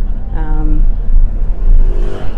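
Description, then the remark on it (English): A moped engine revs up sharply, its whine rising and fading, then another moped buzzes later over a steady low rumble of city traffic in an Italian city, with faint voices in the background. “Love all the mopeds.”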